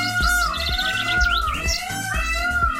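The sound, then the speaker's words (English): A peacock calls with shrill, rising cries over a steady, thumping musical beat that runs throughout, with chirpy high notes scattered across the short stretch. “It's a peacock.”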